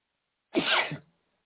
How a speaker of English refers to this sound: Man, sneezing, dude.